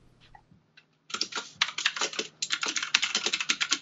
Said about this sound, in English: Typing loud, keyboard, sound smart. I do sound smart.